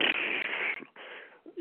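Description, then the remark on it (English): A person imitates a woman's forceful, breathy exhale, breathed out so hard that her top lip quivers. It comes as two quick puffs of rushing air, fairly loud, with a short voiced murmur right after. “She's moving her fingers really quick, and every few seconds she's kind of breathing out real hard, and to the point where like her top lip was quivering a little bit, kind of like a.”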